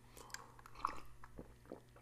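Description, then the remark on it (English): Someone takes a quiet sip of lemon water, with a few soft wet mouth clicks and swallowing noises over a low steady hum. Nobody speaks. “A little drink, a little lemon water, got to have that.”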